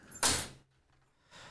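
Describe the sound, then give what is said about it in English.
A bright jangle of keys being set down on a table, a sharp metallic clatter that quickly fades, followed by a softer rattle a second later. No one speaks. “I gotta tell you, let's put all of our keys on the table here and just look at it.”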